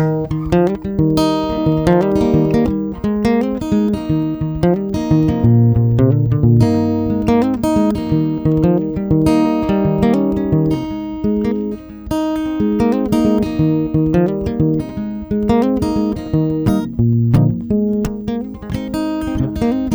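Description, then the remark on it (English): An instrumental country song plays at a steady volume, with rhythmic strummed chords over a bass line and bright melodic notes, no singing or talking throughout. “The first thing we do is we play a song, and then we talk.”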